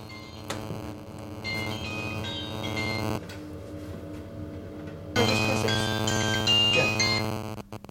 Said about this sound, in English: My phone's going.